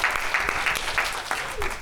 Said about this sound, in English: Yeah, let's clap for gratitude. I love that. Come on.